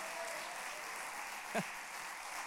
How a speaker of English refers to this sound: If you've been set free by God, somebody clap your hands and praise Him that now you're free indeed. Come on, praise Him.